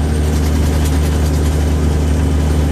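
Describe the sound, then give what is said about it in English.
A truck drives down the highway, its heavy engine droning continuously with a deep low rumble and road noise, loud, holding an even pitch throughout as it cruises along. “And I'd have walked out of the truck stop, gotten back in my truck, and I'd be going down the highway, which I am doing right now.”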